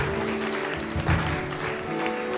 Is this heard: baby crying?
no